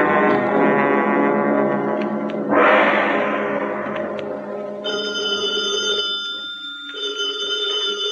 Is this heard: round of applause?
no